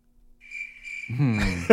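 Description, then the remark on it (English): A steady, high-pitched cricket chirp trills continuously for over a second, fairly clear, before a person's voice starts talking over it near the end. “I wish I had the crickets.”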